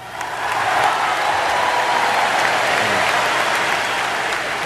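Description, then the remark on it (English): Thunderous applause and cheers from convention delegates in a large auditorium after Ted Kennedy's speech, loud, dense and unbroken throughout, with a faint crowd roar mixed in and no one speaking over it. “The applause and cheers went on, according to one account, for half an hour.”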